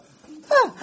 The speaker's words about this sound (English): You get a collective gasp. Loud, though, loud.